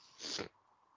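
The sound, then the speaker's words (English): A single sharp, breathy sneeze bursts out loudly, lasting under half a second, then fades into quiet room noise. “Just bless you.”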